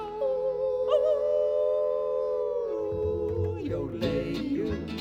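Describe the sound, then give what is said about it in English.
A long, wavering howl holds steady for a few seconds, then breaks into a rough scatter of yips and barking-like cries, loud, with no talking. “We're gonna hoop and holler and howl at the moon.”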